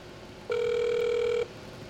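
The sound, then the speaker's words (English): A telephone call to a voicemail line, with the phone held up to a microphone, rings once: a steady, mid-pitched electronic tone with bright overtones lasts about a second, then cuts off, leaving faint background hiss. No one speaks. “I thought I had it set to go like straight to it, but I guess it has to ring a couple times.”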